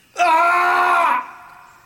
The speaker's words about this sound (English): Their laughter is suddenly interrupted by a thunderous yell of pain coming from the distance. It is impossible not to recognize Goro, the four-armed giant.